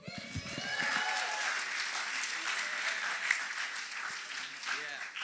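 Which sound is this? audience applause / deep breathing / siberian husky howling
audience applause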